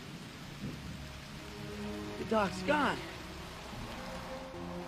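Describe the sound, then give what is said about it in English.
Heavy rain pours down in a steady, dense hiss throughout, with a low rumble underneath, in the ending of the film Back to the Future Part II, when Marty seems to have lost Doc Brown. A man speaks briefly in the middle over the downpour. “The rain's starting to pour down, right when it seems like Marty has lost Doc Brown.”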